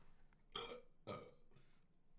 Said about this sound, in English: Chair burp. This chair burps now.